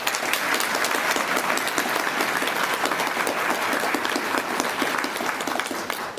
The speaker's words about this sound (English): Let us applaud Lydia for her great efforts.